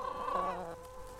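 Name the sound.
chickens clucking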